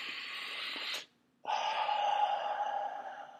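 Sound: deep breathing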